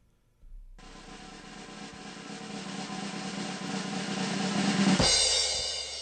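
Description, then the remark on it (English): A sustained drum roll that swells steadily louder for about four seconds, then ends in a sharp crash-like hit that rings out briefly. No one speaks over it. “Can you do your drum roll again?”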